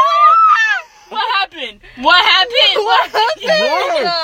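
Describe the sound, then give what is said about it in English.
Loud, high-pitched frightened yelling from people in a car, several strained shrieking bursts overlapping one another with short breaks between them. “And then she yelled and then I yelled.”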